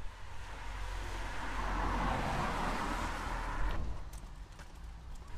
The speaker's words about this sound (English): I'm here at the St Helens bus stop in Barry